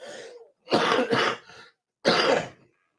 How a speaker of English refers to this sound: Oh man, I am so sorry that I keep coughing on you guys, but I'm trying to get through this as painlessly as possible.